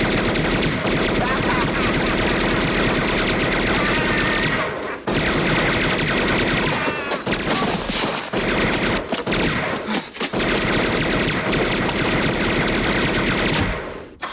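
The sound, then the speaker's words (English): A machine-gun sound effect: loud, sustained gunfire rattles off in rapid continuous bursts for most of the stretch, with a couple of brief pauses before the barrage resumes and cuts off near the end. “Then I'll probably add the sound effect afterwards of the gunshots.”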